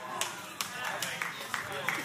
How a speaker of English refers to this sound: For the four of y'all who are clapping, I'm gonna keep preaching.